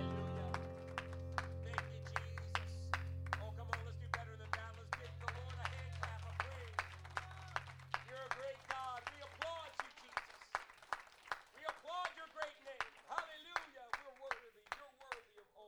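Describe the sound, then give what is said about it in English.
A church audience, seated, claps hands in a steady, rhythmic beat throughout, over a sustained low keyboard drone that stops partway, with voices speaking and calling out over the clapping. “Can we clap our hands one more time as the Lord as you're seated today?”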